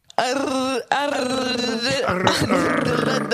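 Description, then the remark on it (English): A dog growls loudly, a rough, throaty snarl that breaks off briefly near the start, then rumbles on continuously with shifting pitch. “It was my dog.”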